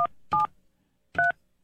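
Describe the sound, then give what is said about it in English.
Telephone keypad dialing tones: a few short, loud dual-pitched beeps in an uneven rhythm, each a brief steady tone with gaps of silence between, and no voices. “I got the area code.”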